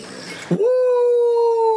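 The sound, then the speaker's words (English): A pug lets out a long, steady, high-pitched whining howl that holds one clear tone for over a second, loud, right after a burst of muffled noise and indistinct voices. “In fairness, that dog is a pug, so it does sort of look like a Chinese dumpling.”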